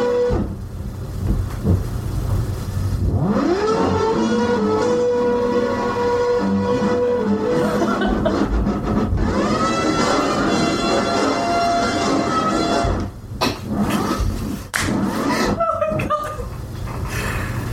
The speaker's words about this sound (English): The cat's currently mixing and scratching records, which is perfect.